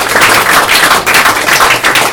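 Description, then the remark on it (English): A crowd applauds to thank a speaker before a short break, a dense, steady patter of many hands clapping at once that swells slightly in waves and keeps going without pause. Nobody speaks over it. “So, ladies and gentlemen, good round of applause, thank you.”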